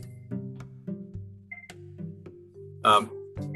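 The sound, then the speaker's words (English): A phone rings with a melodic ringtone: a run of steady electronic notes stepping between pitches at a moderate, clear level, with one brief brighter burst partway through. No one speaks over it. “I'm going to phone call here.”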